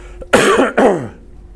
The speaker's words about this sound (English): Sorry for all of you listening to that cough.